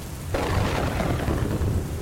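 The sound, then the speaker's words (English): A heavy downpour roars steadily with dense, hissing rain, while a deep rumble of thunder rolls underneath. No one speaks. “Not that they would really be able to see me in the downpour, or that they would even notice, since their conversation was so enthralling.”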